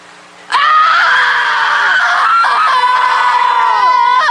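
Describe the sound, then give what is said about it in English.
A woman lets out a long, loud, high-pitched scream that starts abruptly and holds steady for several seconds, with a faint background hum beneath it. “I've looked at clear cuts and burnt forest and I've felt outraged, but I didn't scream and I didn't cry. And I need to.”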